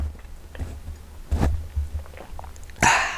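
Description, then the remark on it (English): A breathy slurp of hot water with a little coffee from a mug, ending in a short hissing burst, with softer mouth clicks and handling sounds before it over a low background hum. “That was me taking a good sip of my hot water with just a little bit of coffee.”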